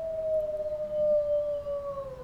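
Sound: wolves howling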